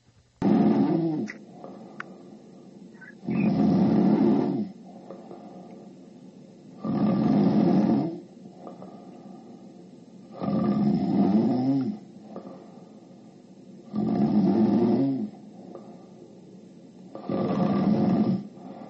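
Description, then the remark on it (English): A man snores loudly and steadily while taking a nap, six long rasping breaths spaced a few seconds apart with quieter pauses between, and no one talking. “He's over there taking a nap. He's snoring like he's sawing a log over there.”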